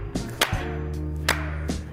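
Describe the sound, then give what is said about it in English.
Two sharp, loud claps land about a second apart in a slow, deliberate rhythm, with fainter taps between them over a steady low hum and no talking. “Yeah, can we slow clap can her? We like, slow?”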